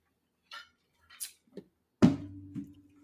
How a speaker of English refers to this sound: Salud. Salud. I'm drinking water tonight, by the way.